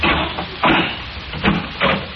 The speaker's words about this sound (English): You see the door? Airtight. Airtight, yes, indeed. I'll open it.